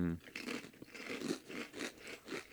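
Close, crisp crunching of potato chips right up against the microphone, a series of loud bites and chews repeating in an uneven rhythm with no talking.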